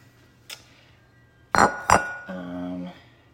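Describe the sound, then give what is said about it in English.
A glass Pyrex mixing bowl, used for combining flour and other baking ingredients, clinks: one light tap, then two sharp, bright knocks that ring out, followed by a short sustained scraping hum as the bowl settles or slides. “I'm going to use my Pyrex.”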